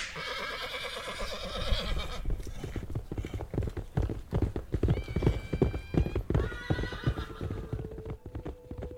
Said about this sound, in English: The fake ranger circled his horse around me and Jesse, pointing his gun between both of us.